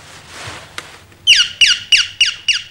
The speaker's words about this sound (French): C'est un cadeau pour ta maman, tu vas voir. Regarde. Des chants d'oiseaux dans une boîte, regarde. C'est ça, appuie là-dessus.